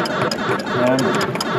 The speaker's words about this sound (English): Listen to the clock.